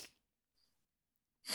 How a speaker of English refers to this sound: That's my sniff.